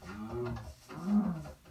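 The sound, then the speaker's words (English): Two low, drawn-out cow moos, one right after the other, each a droning bellow with a rich harmonic tone. The second moo is a little louder, and no one speaks. “These cows just spawn randomly.”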